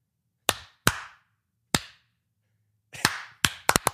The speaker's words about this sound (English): Stop it. You can't spam it. Can't spam clap.